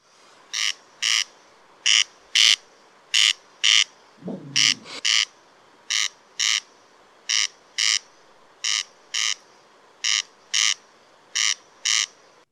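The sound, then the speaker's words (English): A corn crake, a bird of the rail family, calls steadily, a dry, rasping double 'crex-crex' repeated in evenly spaced pairs, loud and insect-like, with a brief lower groaning sound partway through. “The judges' votes are in, and the answer is Corn Crake is the bird.”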